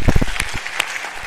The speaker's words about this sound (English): Yeah, you can give the Lord a hand clap for that. Amen.